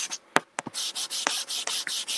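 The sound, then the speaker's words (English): A pencil scratching rapidly across paper in quick back-and-forth strokes as someone draws, a rough, rasping sound like light sanding, steady with a few sharp taps mixed in. “It just sounded like you were sanding something.”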